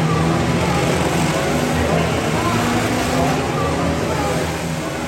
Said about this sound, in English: So this is the chassis dynamometer. During our dyno days, we're bringing cars in.